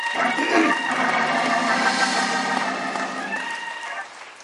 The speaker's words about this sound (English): Let us give him one more hand clap of praise.